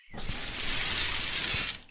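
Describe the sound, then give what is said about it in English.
Water runs in a steady, hissy stream for nearly two seconds, starting and stopping abruptly, fairly loud like a tap or pour, poured for a thirsty plant, with no voices. “I could sure use some water.”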